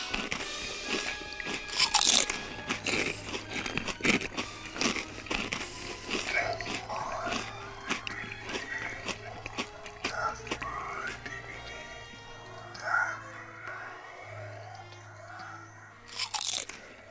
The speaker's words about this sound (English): Try it today! Become a real creature and munch our Black Lagoons.